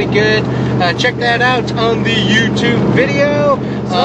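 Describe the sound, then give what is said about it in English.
Steady low rumble of road noise fills the cabin of a moving vehicle, a constant droning hum running beneath a man talking into the microphone. “Sorry about the road noise, but check that out.”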